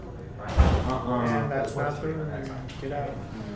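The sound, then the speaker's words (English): A single heavy door slams shut with a sharp, low thud near the start, followed by people talking for the rest of the moment. “Let's lock that door.”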